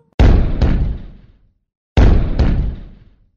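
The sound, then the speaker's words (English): Cannon fire in two pairs of loud booms, each blast hitting hard and rumbling off over about a second, with a short pause between the pairs and no voices. “Have you ever been shot out of a cannon before?”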